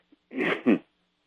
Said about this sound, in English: Yeah. Excuse me. Well, one more cough left, I guess.